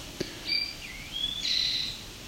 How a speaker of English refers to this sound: So who knows what population this one is from? Could be part of a population of Northern Ontario towhee that have a sweeter song.